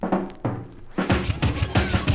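A hand slaps a table repeatedly, about seven sharp, thumping smacks, spaced apart at first and then coming quicker in an uneven rhythm, with no voices.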